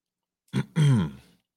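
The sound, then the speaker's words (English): A short gulp of water, then a satisfied, voiced "ahh" that slides downward in pitch and trails off. There is no talking, and the sounds are moderately loud. “I say this as respectfully as I can as I drink my water.”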